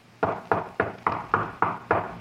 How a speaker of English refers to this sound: Then I heard the knocking on the door. Somebody had heard the noise.